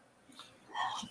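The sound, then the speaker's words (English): A single soft, stifled sneeze: a faint breathy intake followed by a short muffled burst near the end, with no talking. “sorry, I think I'm going to sneeze.”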